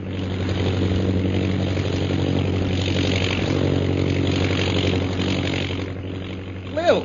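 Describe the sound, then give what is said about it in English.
A steady, droning airplane engine hums continuously as the plane flies high over the hills of Upper Burma, a low, even rumble with layered tones, briefly rising toward the end. “Jungle Jim and Shanghai Lil are in a plane which is high over the hills of Upper Burma.”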